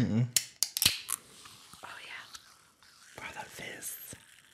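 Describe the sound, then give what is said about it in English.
A can of Waterloo lemon lime sparkling water cracks open with a few sharp clicks and a pop, followed by a soft, steady fizzing hiss that crackles faintly for several seconds. “I'm gonna pop this Waterloo lemon lime sparkling water.”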